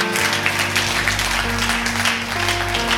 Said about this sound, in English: Would you clap your hands and thank God for that?